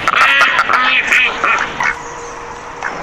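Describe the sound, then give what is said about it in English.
Several ducks quack loudly and rapidly, their raspy calls overlapping in a busy burst before thinning out into a few quieter, scattered quacks toward the end. “The two duck islands are fighting?”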